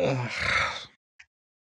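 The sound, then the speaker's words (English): A person gives a long, drawn-out yawn lasting almost a second, voiced and breathy, followed by a brief soft click or smack after a pause. “Nice yawn.”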